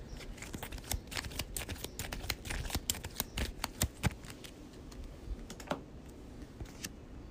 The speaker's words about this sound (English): And shuffle the Haven back into the exploration deck.